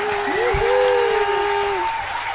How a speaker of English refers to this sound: And here's a big shout-out to Annie Goodman. So Annie gets the big applause.